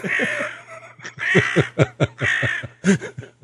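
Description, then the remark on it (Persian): A crow caws repeatedly in harsh, raspy bursts, loud and close, with short gaps between calls and a faint low hum running underneath. No one speaks. “اصلا اون خانمه که صدا کلاغ پخش میکردی نمیان دیگه”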